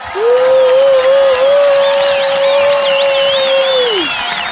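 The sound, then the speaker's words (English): A burst of crowd applause and cheering welcoming a guest onto a show runs for about four seconds at a steady, loud level, topped by a long held tone and high wavering whistles before it cuts off. “Let's go ahead and give a warm welcome and round of applause”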